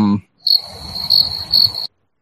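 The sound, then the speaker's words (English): Crickets chirp in a steady, high-pitched trill that swells three times over a low background rumble, lasting just over a second after a brief clipped voice at the start. “Now we're the crickets.”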